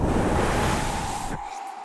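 breathing into the microphone

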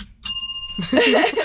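bell being dinged

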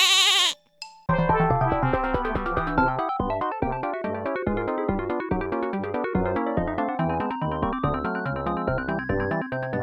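goat bleating

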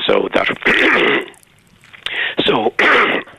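throat clearing

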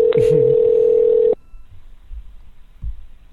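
telephone ringing

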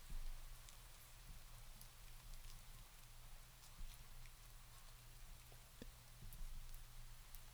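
rain falling

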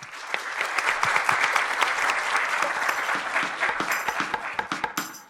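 audience applause

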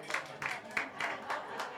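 sparse audience clapping

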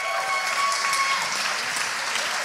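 church audience applauding

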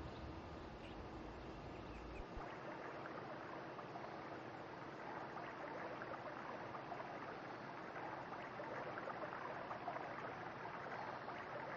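flowing stream water

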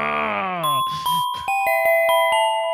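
segment transition chime

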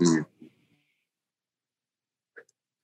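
sneeze

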